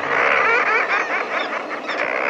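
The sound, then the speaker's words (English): Dense, raucous chorus of many seabirds calling at once from a common murre nesting colony standing on narrow ledges high on the steep face of a sea cliff, a continuous laughing, growling din with no pauses ringing out above crashing ocean waves, fairly loud. “The voices belong to birds, to a nesting colony of common murres, standing on narrow ledges high on the steep face of a sea cliff.”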